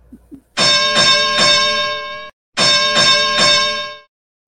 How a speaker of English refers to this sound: it's time to ring the bell. So, Joe, ding, ding. Ringing the bell.